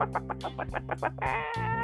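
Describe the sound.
A person imitates a chicken, giving a quick run of about eight short clucks before stretching into one longer, drawn-out squawk. No other talking is heard.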